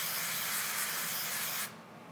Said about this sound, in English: I'm gonna give it a nice even coating of the spray on both sides, and then a nice healthy dusting of the blackening spice. So here I go with the olive oil spray.